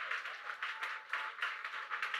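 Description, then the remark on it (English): An audience at Keeper's House Chapel International, Madina Estate, Accra, claps together as praise to God in a dense, steady burst of applause, many hands overlapping into a continuous crackling wash with slight rhythmic surges, moderately loud throughout. “Come on, clap it one more time.”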